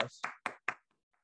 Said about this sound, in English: This is officially Matthew Stafford's first NFL playoff win. Congratulations, Matthew Stafford. You have officially won. Round of applause.